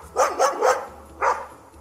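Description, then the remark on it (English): A dog, outside, barks four times: three sharp barks in quick succession followed by a single bark after a short pause, clear with no talking. “The only problem now was that I did not know where the crash had come from, but luckily my dog did and signalled for me to follow him.”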